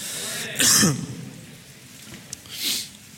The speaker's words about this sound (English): Say a quick prayer in your hearts for my cough so I don't drive you crazy all morning like I drive my wife crazy every day. She's like, why are you coughing so much? I'm like, I don't do it on purpose, you know?